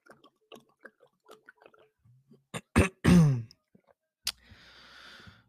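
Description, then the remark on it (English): Someone takes a swig of water: faint handling clicks, then a few loud gulps and a throaty, satisfied exhale, followed by a click and a soft breathy hiss. No one speaks. “Hold on, let me take a swig of water.”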